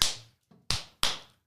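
Three sharp hand claps at the start of a recording, in an uneven rhythm, with a softer tap just before the second. Each crack is bright and quickly fades, and no one speaks.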